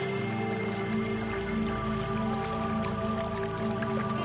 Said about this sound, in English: As you slip into the waters and the gentle waterfall makes a beautiful sound behind you.